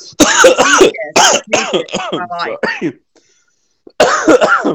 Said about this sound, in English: Let me clear my throat.